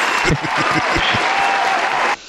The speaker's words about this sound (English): But, I want to clap for you. Can we clap for you? Okay. I want to clap for you.